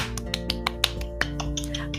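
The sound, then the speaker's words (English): A handful of people clap briefly, with sharp, uneven claps that start fairly crisp and then thin out into softer, scattered ones over a steady low background hum. “Everyone, clap.”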